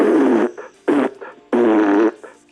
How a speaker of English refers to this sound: Cut it out with the fart sounds. Stop it!